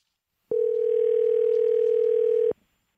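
A steady electronic telephone dial tone sounds for about two seconds, clear and fairly loud, as a call is being placed, then cuts off abruptly, with silence on either side and no talking.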